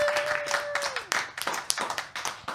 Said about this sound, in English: Happy Founders Day. Long delayed. Holy shit. Yeah. But well deserved. Everybody, let's get a round of applause.